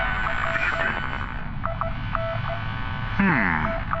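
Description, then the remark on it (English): Strange beeping comes over a hissing short-range comms radio channel: a few short, mid-pitched tones in an irregular pattern, then a louder warbling burst of sweeping tones near the end. “come and listen to this strange beeping on the short-range comms.”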